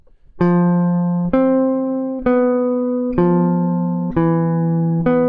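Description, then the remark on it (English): Guide tones (the third and seventh) of a 2-5-1 progression of D minor 7, G7 and C major 7, played as a series of six sustained two-note chords, each struck about once a second with a clean, steady, organ-like tone and no talking. “now I'm going to go play through the guide tones of each chord, D minor 7, G 7, and C major 7, one after each other.”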